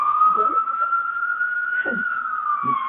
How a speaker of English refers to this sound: Well, you know, that's the thing is, like, you hear a lot of ambulances, and then for some reason, again, when there's a crisis like this, it feels different.